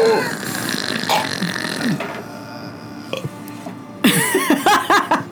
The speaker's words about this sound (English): They laugh as they burp.